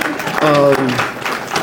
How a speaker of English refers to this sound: All right, can you guys give these guys a round of applause? Thanks for making sports.